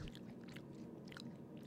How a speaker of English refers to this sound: They're crunchy. Those are very good. Let's see if you can hear the crunch. Yeah, for the ASMR.